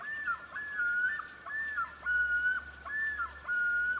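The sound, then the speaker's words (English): A loon call: clear, mournful whistled notes that rise, hold and slide down in pitch, repeated in about three phrases over a low steady hum, with no voices. “In the Loon Monitoring segment, we put on our DNR badges, we get into a little boat, and we watch as birds make weird calls that scare the crap out of you at night.”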